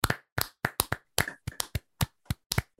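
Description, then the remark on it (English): A few people clap together in about a dozen sharp, separate bursts, the rhythm slightly uneven and the claps loud and crisp, with no talking, as they clap it out at the end of a bracket. “And as we do at the end of every single bracket, we are going to clap it out.”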